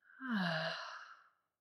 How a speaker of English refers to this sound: You can inhale through your nose. And exhale out the mouth. Easy inhale. Breathing out the mouth.